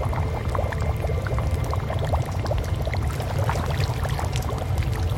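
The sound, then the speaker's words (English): Water churns and splashes steadily as a gilled creature surges up out of it, with busy sloshing over a deep low rumble and no voices. “And then, whatever had spoken rose from the water like bloody Jesus.”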